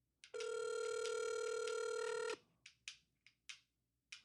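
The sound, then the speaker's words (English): A phone call rings with one steady, bright electronic tone lasting about two seconds, followed by five short, fading clicks at moderate volume before voicemail answers, with no voices. “It better pick up.”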